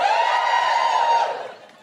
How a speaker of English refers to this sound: Just give us a cheer if you're in a position to do maths right now. Just give us a cheer if it's best you don't, if it's important.